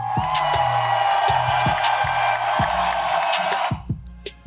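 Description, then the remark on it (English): An audience claps and cheers in a loud, dense wash of sound over music with a thumping low beat, sustained for several seconds before thinning out at the end. “Let's clap one more time.”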